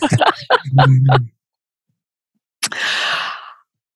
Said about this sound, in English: I'm fighting a sneeze here. I'll bless you in advance. I couldn't even get to the mute button.